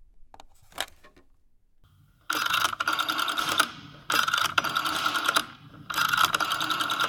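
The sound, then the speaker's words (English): A rotary telephone is dialed to call the operator for the police: a few faint clicks, then three loud, buzzy ratcheting whirs as the dial spins back, each lasting just over a second with brief pauses between. No one speaks. “Use this phone”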